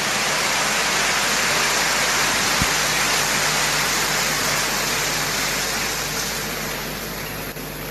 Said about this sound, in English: Well, let's give the Lord a big round of applause for our speakers.